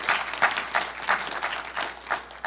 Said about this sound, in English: It was a good VBS. Yeah, go ahead and clap.